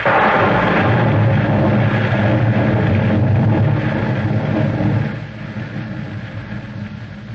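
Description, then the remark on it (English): A thunderstorm with heavy rain: a dense, steady roar of downpour over deep, rolling rumbles, loud and continuous, easing somewhat after about five seconds. No voices. “The storm grew worse.”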